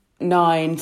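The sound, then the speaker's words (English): A voice speaks briefly, then a loud, steady electronic censor beep cuts in abruptly right at the end, a flat single-pitch tone covering spoken landline phone numbers. “We'll beep them out, but just for anyone listening, you absolutely nailed that.”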